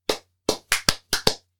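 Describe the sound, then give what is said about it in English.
A brief applause sound effect played from a button: about seven sharp, crisp hand claps in an uneven rhythm, loud and bright, with no voices over them. “Where's the applause button?”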